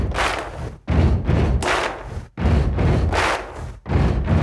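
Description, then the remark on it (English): Heavy foot stomps and sharp claps repeat in a steady stomp-stomp-clap pattern, loud and booming, with the cycle recurring about every second and a half. “Stomping your feet with the clap.”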